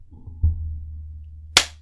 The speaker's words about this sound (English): Will these pick this up if I clap here? Kind of. I'm going to just turn this one around so that I can clap for both.